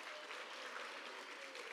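A crowd claps steadily, a dense, even wash of many hands applauding with no pauses, holding a fairly constant loudness throughout the short stretch.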